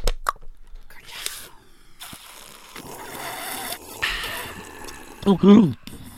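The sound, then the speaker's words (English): Several people drink soda together, with wet slurping, gulping and liquid sloshing, a few faint clicks, and a short voiced exhale or murmur near the end. “This is the drink for the podcast.”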